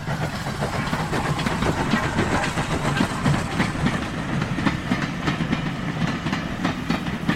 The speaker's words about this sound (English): a team of horses brought to a halt at the distant call of a steaming locomotive and its trailing boxcars.